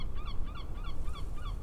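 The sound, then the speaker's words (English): Seagulls call in a quick series of short, repeated cries as they wheel over beach dunes, over a steady low rumble like surf or wind. “They're on the beach, and her eyes are up on the seagulls, spinning over the dunes.”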